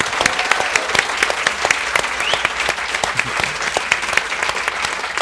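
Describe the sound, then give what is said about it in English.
Sustained audience applause for author Graham McRae Burnett, just longlisted for the Man Booker International Prize: a dense wash of many hands clapping steadily at a fairly loud level, with a few sharper individual claps standing out and no talking over it. “And I think we need an extra burst of applause, because Graham has just been longlisted with the Man Booker International Prize, which has delighted all of us.”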